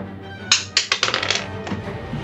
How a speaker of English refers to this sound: All right, I will roll the dice. Would you like to hear it? Sure, please.